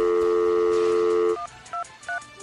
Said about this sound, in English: I'm going to phone. Just hit redial.